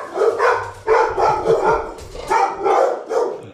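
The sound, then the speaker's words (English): A dog barks repeatedly and loudly in a steady run of sharp barks with brief gaps between them, with no voices. “we had to edit out the barking got kind of to the point where it's critical mass.”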